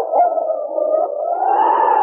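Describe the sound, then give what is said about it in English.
A dog whimpers happily in one long, continuous whine lasting about two seconds, its pitch lifting slightly toward the end. It is fairly loud, with no talking. “Crabbed arms were around his neck, and he whimpered happily.”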